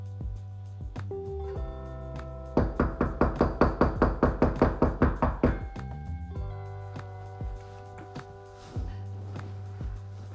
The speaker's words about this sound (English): Now, what is this lady coming up here to? Is he knocking on my door? Who is this person?